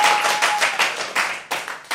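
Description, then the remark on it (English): An audience applauds to vote for Team Ham Roll in a live dungeon-exploring game, a dense, bright wash of many hands clapping with sharp individual claps standing out, steady and fairly loud throughout, with no voices. “All right, Karen, you heard that applause, so now you know who won.”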